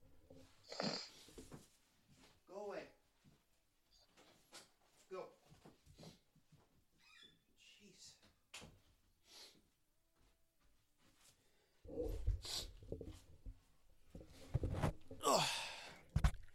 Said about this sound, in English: Every time we go to record, my dog's like just whining in the background.